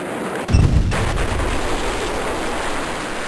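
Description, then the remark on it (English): A sudden, massive explosion booms, its deep low-end blast followed by a sustained roaring rumble of noise that fills the rest of the moment without any voices. It is a second, far more powerful blast, five times the strength of the first, sending fire and shockwaves through residential neighborhoods, and it could be felt almost 20 miles away. “An hour later, just as shocked onlookers were confident the worst was over, the second and far more powerful blast sent fire and shockwaves tearing through the neighborhoods.”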